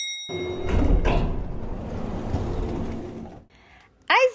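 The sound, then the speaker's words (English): A door opens with a sustained rumbling scrape lasting a few seconds, fairly loud, as someone comes in. After a short pause, a voice briefly calls out at the very end. “That's how I like to be greeted when I come in the door.”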